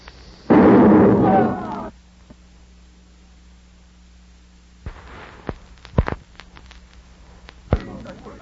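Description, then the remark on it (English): A single loud cannon blast, its fuse lit with a cigarette, booms for over a second, then fades into quiet, followed later by a few scattered sharp thuds and pops. “How can I light the cannon fuse without a cigarette?”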